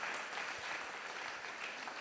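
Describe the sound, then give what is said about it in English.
A church audience claps steadily, applauding themselves. The dense patter of many hands blends into a continuous, even wash of applause with no voices on top. “Give yourselves a round of applause, because you did that.”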